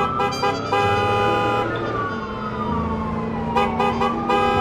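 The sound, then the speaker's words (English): Loud, dense traffic noise with car horns blaring in overlapping bursts and a falling, siren-like wail, as a mid-1960s American-made car speeds through the din, darting through red lights. No one speaks. “Her reputation as a great driver could be seen as she's darting through red lights, scraping cars in narrow laneways, and even jumping on sidewalks to avoid traffic.”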